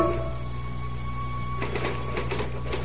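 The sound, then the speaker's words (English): Quiet mechanical hum, then typing begins partway through: a quick, uneven run of sharp key clacks that keeps going over the steady drone to the end. “I typed through the night.”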